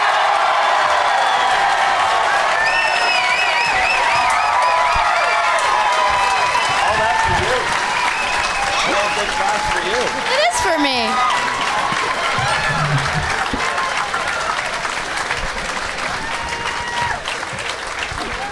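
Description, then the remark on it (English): A crowd bursts into sustained applause with cheers and whoops as guests Randy Sklar, Jason Sklar, Amy Miller and Mark Wahlberg are welcomed, a dense, loud wash of clapping that holds steady for the whole stretch with scattered shouts rising above it. “Please give a big, warm welcome to Randy Sklar, Jason Sklar, Amy Miller, and Mark Wahlberg.”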